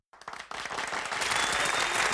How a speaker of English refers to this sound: You hear the hand clapping. You hear the whatever.